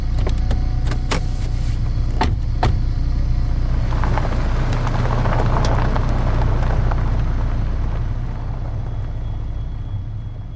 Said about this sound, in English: Inside the car, Bill drives, shoveling some chips into his mouth.